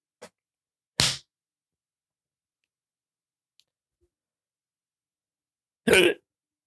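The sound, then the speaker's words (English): Two sharp, gulping hiccups several seconds apart, each a short abrupt burst, with a faint click before the first and near silence in between. “Well, I can't get rid of these hiccups.”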